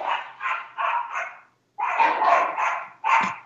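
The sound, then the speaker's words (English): Small pet dogs bark in quick, high-pitched bursts, four evenly spaced yaps, a brief pause, then a louder, overlapping flurry of barking. Fairly loud, with no talking. “It's the attack of the little puppies.”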